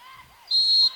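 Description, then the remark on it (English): A referee's whistle gives one loud, sustained, piercing high-pitched blast, called for a net violation, over a soft background murmur of crowd noise at a volleyball match. “And the whistle there.”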